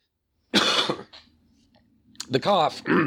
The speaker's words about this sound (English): The cough is not part of the official plot synopsis, for those of you taking notes.